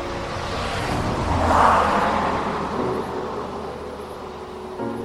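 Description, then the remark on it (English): A single car swells out of a steady road hum, peaking midway as it rushes past on a highway outside a base, then fades back into the low background rumble. “The only thing that broke the quiet was the rare passing car on the highway outside the base.”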